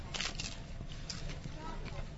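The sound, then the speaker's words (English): Crisp, crackly crunches from biting into a whole wheat corn chip mixed with hummus and hot sauce: a sharp burst early on, then a few softer chewing crackles, fairly loud with no talking over them. “I'm going to take a little bite. You're going to hear the crunch.”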